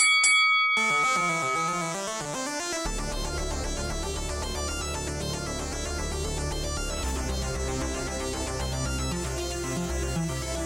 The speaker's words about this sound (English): And a bell rings. Roll initiative, everybody.